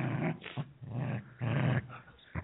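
Puppies growl playfully in several rough, rumbling bursts, fairly loud, with short gaps between the scuffling snarls and no talking.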